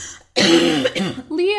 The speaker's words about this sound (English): Sorry, I'm about to cough, I think.